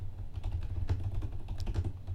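Rapid keyboard typing while searching in Google: a steady flurry of light plastic clicks and taps over a low background hum, with no voices.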